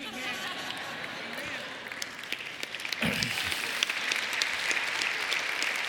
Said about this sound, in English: Okay, I'm glad you're applauding.